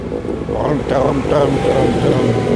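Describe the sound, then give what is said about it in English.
A tractor engine rumbles past, coming from behind, a steady low drone that holds loud and even throughout, with a rough, churning texture and a bit of wind noise. “Oh, there's the tractor again. Coming from the other side. Coming from behind me now.”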